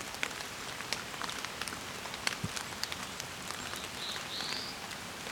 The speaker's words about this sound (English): There's the bees call of the black-throated blue, probably a migrant in this case.